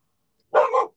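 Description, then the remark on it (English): A single sharp, loud bark from a scared dog running inside with its tail tucked, cutting through an otherwise silent moment with no talking. “just ran inside, ducking her tail and barking.”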